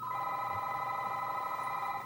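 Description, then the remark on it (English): A telephone rings with a steady, continuous electronic tone that holds evenly for the whole stretch, fairly loud, with no voices over it. “I'm gonna answer the phone.”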